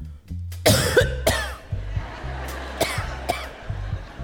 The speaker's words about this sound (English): You couldn't just cough once. No one coughs just once. You have to remember to trail off the cough.